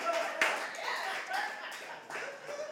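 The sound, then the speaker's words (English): An audience applauds in a dense, steady patter of many hands clapping at once, fairly loud throughout, with a few voices faintly mixed into the noise. “More or less, ladies and gentlemen, let's clap it up for those more or less students right now.”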